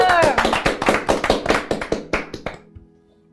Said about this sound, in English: There is applause.